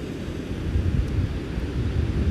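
Steady, low rumbling wash of ocean surf on a beach, continuous, with wind buffeting the microphone and no one speaking.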